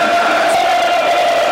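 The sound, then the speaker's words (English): A large football stadium crowd of an estimated 30,000 people roars and cheers in a steady, dense wash of voices that stays loud and unbroken throughout, with no single speaker standing out. “I don't know what crowds are here today.”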